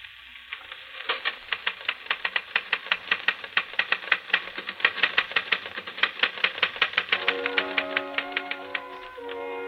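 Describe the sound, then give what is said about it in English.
Rapid, steady typewriter keystrokes clatter in a continuous run, played from a special record on a small portable phonograph with a repeating attachment in hotel room 241, with a slightly thin, recorded quality and faint hiss underneath; a couple of brief tonal hums creep in near the end. No one speaks. “Yes, Charles, you're busy typing on a phonograph record.”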